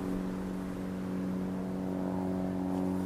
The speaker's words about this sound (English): A single engine, singing a quiet, sweet sound, and approaching directly on course.